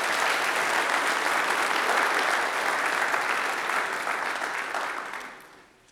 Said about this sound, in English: Thank you, girls. We've had a lot of good leadership from our gens. Can we give them a round of applause and thank them for their involvement?